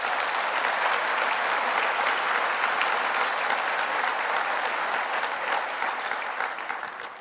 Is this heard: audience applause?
yes